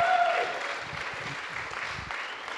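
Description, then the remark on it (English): An audience breaks into steady applause, many hands clapping together in a dense, even patter that eases slightly after the first moment and carries on for a few seconds. “Can we give old Peter a clap today?”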